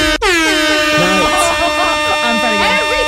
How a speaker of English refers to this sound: Horn. That's the air horn, okay? There we go.